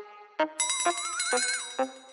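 Bright, ringing bell-like chimes strike about four times in quick succession, their high metallic overtones lingering and overlapping while a wavering tone hums underneath. Clear, with no voices.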